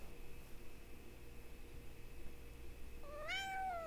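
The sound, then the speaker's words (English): A single cat meow rises near the end, clear, over a steady low background hum and hiss, with no one talking; the female cat, Grim, is walking onto a computer. “What is it with cats and walking right on my computer?”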